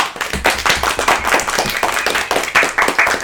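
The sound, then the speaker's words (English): Dense, steady clapping from several hands, a bright rapid patter of sharp slaps that stays loud and even throughout with no voices. “Clap.”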